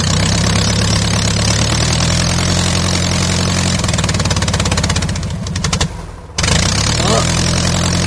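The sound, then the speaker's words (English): A small engine chugs and idles with a loud, steady low drone and rapid rhythmic putter, dropping off briefly near the end before catching and running again. “Sounds like he's riding his prop plane. No, isn't that a sit-down lawnmower?”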